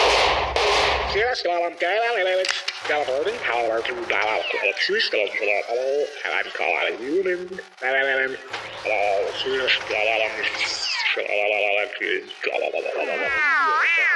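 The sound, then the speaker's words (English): Loud gunfire bursts out at the start, then rapid sharp cracks keep going under a chaotic tangle of shouting, warbling voices and swooping electronic sounds. “I knew I should have sprung for the bulletproof case.”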